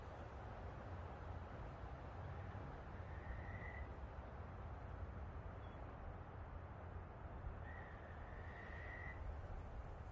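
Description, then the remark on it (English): A frog croaks steadily in a dense, continuous outdoor chorus, its rasping calls filling the background, with a couple of brief higher whistling tones rising over it and no talking. “The frog's going off again now.”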